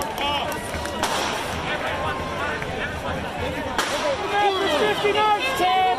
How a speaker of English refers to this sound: Okay, so while he's doing this speech, or around the same time, they're shooting the fireworks at the courthouse still, as you can see.